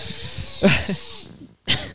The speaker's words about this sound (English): So I'm going to need you to stop sniffing. It's pretty gross.